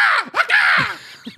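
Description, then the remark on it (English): Someone imitates an Orinoco macaw with a string of loud, raspy, harsh squawks, rising and falling in quick succession, with a short clipped squawk at the end. “The Orinoco macaws. Classic Orinoco McCaw.”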